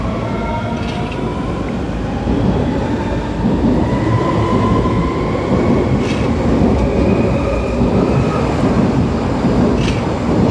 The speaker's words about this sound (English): And one more local commuter train pulling out on its way somewhere.